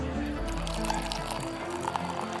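A drink is poured into a glass in one steady stream, its gurgling pitch climbing as the vessel fills, over a low background murmur.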